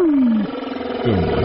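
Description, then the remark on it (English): Deep, moaning whale calls: a long groan sliding downward in pitch, followed by a second wavering, rising-and-falling cry. Loud and resonant, with no voices present. “Those are the whale calls.”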